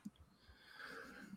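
A quiet sneeze: a short intake of breath, then a breathy, hissing burst of air that trails off. No one talks.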